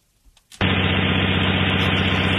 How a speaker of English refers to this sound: You're not missing anything. It's just an engine of some sort.